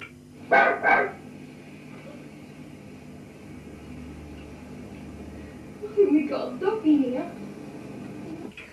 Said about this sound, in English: You'll hear here the whistling first of all, and then the barking. And here is this noise. The barking here is quite extraordinary, actually.